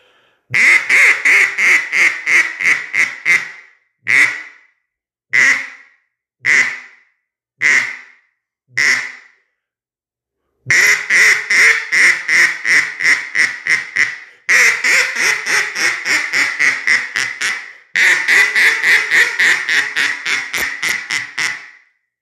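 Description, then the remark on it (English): A Falk CA11 single-reed cane duck call blows loud quacking: a rapid descending run of quacks, then five spaced single quacks, then long fast cadences of raspy quacks, with no talking. “Guys, so that's the Falk CA11 cane duck call.”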